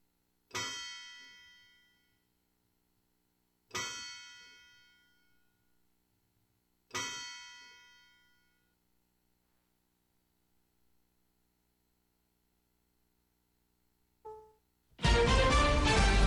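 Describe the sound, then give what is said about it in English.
The courthouse clock bell in Murfreesboro, marking 7 o'clock, strikes three times, evenly spaced, each loud clang ringing out and fading before the next, followed by a short tone and then a sudden loud, dense burst of sound. “Courthouse clock time, 7 o'clock.”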